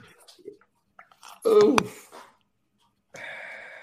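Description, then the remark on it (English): A single loud sneeze, a quick breathy build-up ending in a sharp burst, followed by a pause and then a steady hiss of breath or background noise. “Sneeze on me. Just sneeze on me. It's fine.”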